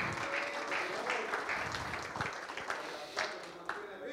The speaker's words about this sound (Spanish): Si usted lo cree, dé un aplauso al Señor.